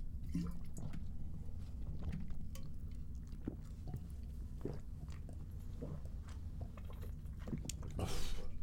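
human body sound, drinking water

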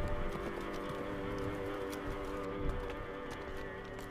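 animal, horse hooves clip-clopping

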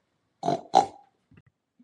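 animal, pig oinking

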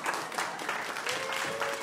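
crowd, audience applause

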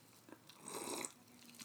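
human body sound, slurping a drink

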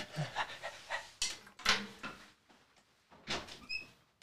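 animal, dog panting

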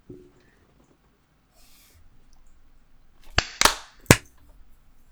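crowd, group hand clap

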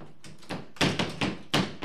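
household object, door slamming

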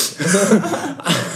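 human body sound, someone sniffing

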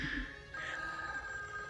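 household object, telephone ringing

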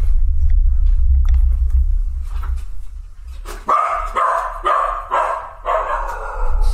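animal, dogs barking

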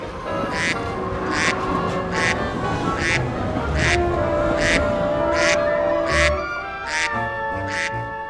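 bird, duck quacking

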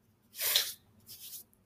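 human body sound, sniffing

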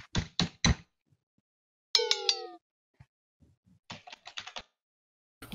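household object, door closing

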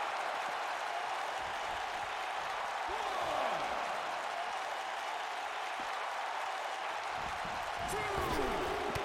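crowd, wrestling crowd cheering wildly

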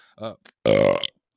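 human body sound, burp

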